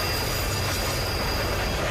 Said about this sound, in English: What that is? It's a bus. Nope. Taxi cab. Nope. Streetcar. Bigger. Train. It's a train.